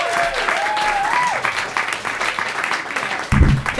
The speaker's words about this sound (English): Right, you guys, this next comic coming to the stage, so very funny, just is a showstopper all around town and travels so often, but she's here right now for you. Give a round of applause for the very, very hilarious